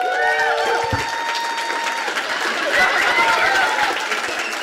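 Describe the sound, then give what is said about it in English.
A crowd applauds steadily for several seconds, dense clapping mixed with cheers and a few shrill whistles, the roar holding at an even level throughout. “That applause may be for Chris Hardwick.”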